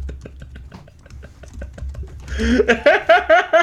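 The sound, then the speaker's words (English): Rapid, heavy typing on a keyboard clatters in a steady stream of sharp clicks, and a voice starts talking over them for the last second or so. “I'm keeping every bit of this. The heavy typing.”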